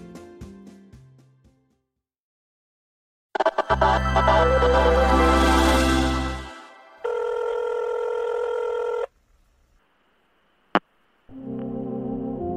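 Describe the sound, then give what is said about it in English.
A telephone rings in several loud electronic bursts, each a steady buzzy tone broken by short pauses, with a sharp click near the end and no one speaking. “we can't come to the phone right now because we're taking a break for the holidays.”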